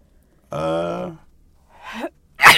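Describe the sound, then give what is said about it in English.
A person sneezes: a drawn-out voiced intake of breath, a second catching gasp, then a sudden loud, explosive burst at the end, with no one talking. “Bless you.”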